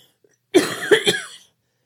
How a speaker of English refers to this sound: Sorry, can I cough one more time?